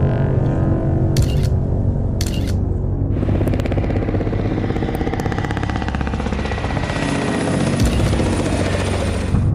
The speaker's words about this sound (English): Not long after releasing his images, the infamous black helicopters appeared, flying very close to his house.